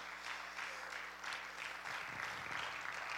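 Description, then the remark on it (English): A church audience claps their hands to the Lord in a steady, dense burst of applause that fills the whole stretch at an even, moderate loudness, with no one speaking over it. “Would you just clap your hands of the Lord one more time?”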